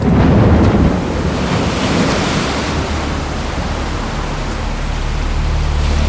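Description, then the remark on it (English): A stormy sea roars continuously, with heavy waves surging and wind buffeting, loudest in the first second before settling into a steady, dense rush. No voices are heard. “In one powerful sermon, he compared the situation in Germany to the terrified crew of a boat caught in a fearsome storm.”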